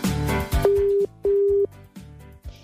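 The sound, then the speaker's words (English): A telephone ringback tone on an outgoing call to a listener for a quiz: one double ring, two steady buzzing pulses close together, heard loudly over rhythmic background music. “So this means that music, and we just start ringing people round and give them passes.”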